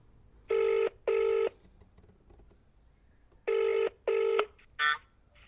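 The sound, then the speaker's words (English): A phone's ringback tone comes through a handset held up to a mic while calling a man to see if he's home: two double-buzz rings a few seconds apart, tinny and steady, then a brief higher blip as the call connects. “Here, let me give him a crack here. See if he's home.”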